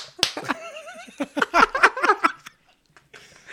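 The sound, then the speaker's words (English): A rapid, uneven series of sharp hand slaps, fairly loud, mimicking skin-on-skin smacking, with giggling and laughter mixed in before the sound stops abruptly. “It's just fucking slapping meat, bro. Pop, pop, pop.”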